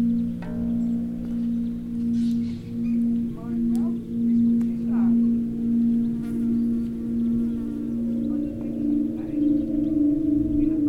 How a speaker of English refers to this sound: But you get a little bit of difference between the tones of the string. So, you know, if you hit one, another one, a little bit different. So you're getting the different tones, different harmonics from the different strings.